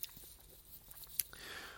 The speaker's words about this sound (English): Excuse me, let me sip my coffee here.